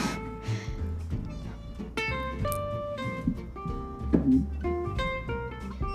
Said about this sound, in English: It's my mic stand. I thought it was the cat meowing.